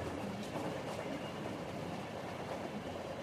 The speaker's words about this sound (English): The vibrations of the train are strong, yet soothing.